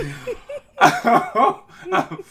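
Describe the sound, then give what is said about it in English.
A loud coughing fit brought on by getting excited: four or five harsh, raspy bursts in an uneven rhythm, following a brief strained vocal sound that could be laughter. “I told you I can't get too excited. That's when I get the coughing.”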